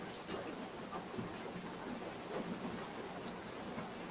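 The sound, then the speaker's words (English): Steady, heavy sideways rain pours down on the speaker in a dense, continuous hiss with a low rumble underneath, like a thunderstorm downpour. No one speaks. “Yeah, I'm legit getting rained on. It's sideways rain.”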